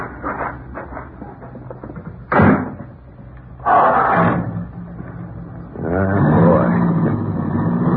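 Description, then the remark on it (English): Two doors of a new car slam shut a second or so apart, then the car's engine turns over and settles into a steady idling rumble. No one speaks. “Okay if we take your car, Mr. Garrett? Sure.”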